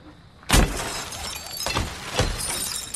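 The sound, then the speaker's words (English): In a movie scene featuring Goodman, a car is smashed with heavy blows, glass shattering loudly on the first strike and two more crashing hits following, a bright tinkling of broken glass lingering between them. No one speaks. “That's what happens when you fuck a man in the ass as he's destroying a car.”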